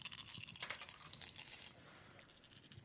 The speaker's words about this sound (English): Oh, yeah, keep them rolling. Keep them rolling, baby. He's rolling a lot of dice.